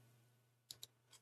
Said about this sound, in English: And I apologize for the typing.